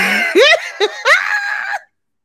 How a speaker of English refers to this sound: Now, y'all, I told you I was going to scream, but that time. I'm sorry.